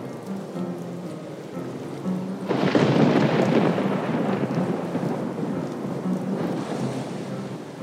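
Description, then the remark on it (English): Steady rain hisses beneath a deep, rolling rumble of thunder that swells loudly partway through and lingers, a full thunderstorm with no voices. “As he approached his front door, he felt a raindrop on his forehead.”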